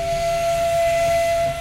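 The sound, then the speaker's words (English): A steam train whistle sounds as a single sustained, steady tone over a broad, loud hiss of steam as the train steams into Kuranda Station, with no voices present. “The 2:45 train steams into Kuranda Station.”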